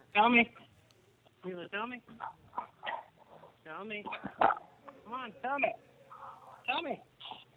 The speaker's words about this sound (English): We just got a dog barking right into the phone. Yeah. That is so awesome.